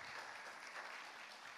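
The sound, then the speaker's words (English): Steady applause from an audience giving Jesus a round of applause, a dense wash of many hands clapping at an even level with no distinct individual claps standing out and no voices. “Come on, give Jesus a round of applause.”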